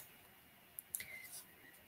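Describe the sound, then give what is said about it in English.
A few faint, quick scratches of a pen on paper, short strokes clustered together, very quiet, as someone writes numbers at the bottom of a graph. “Write a few more numbers at the bottom of my graph.”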